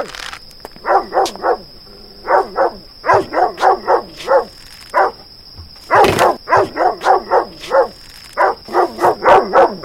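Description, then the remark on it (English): A dog barks and yips in rapid, aggressive bursts as it attacks a person, loud, with short pauses between volleys, over a steady high-pitched tone in the background. “You kicked the dog? It tried to attack me.”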